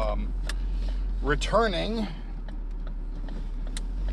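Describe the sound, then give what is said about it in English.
Steady low rumble of a car interior throughout, with a few faint clicks and a brief wavering vocal sound from someone in the cabin midway. “We're in my car.”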